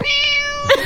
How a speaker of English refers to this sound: He gets a meow.